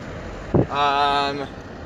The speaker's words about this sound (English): I'm in the car going to work.